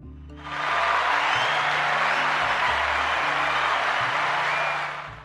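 Steady, dense applause for first responders swells in within the first half second and holds at a loud, even level for several seconds before easing slightly at the end, with a low droning hum underneath.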